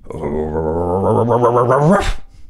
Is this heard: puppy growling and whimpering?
yes